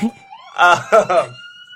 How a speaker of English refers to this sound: Well, it's been a while since we've had the sirens like that. Since they moved the, Well, that guy's really cranking it. Since they finished the firehouse down the street.